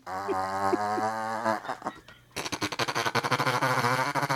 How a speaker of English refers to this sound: That's a horrible machine gun fart. But anyway. Wow. Okay. That went further than I thought.